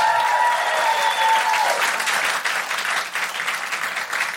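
An audience claps in a dense, steady round of applause lasting about four seconds, with a high held tone rising above the clapping during the first moments before the clapping continues alone.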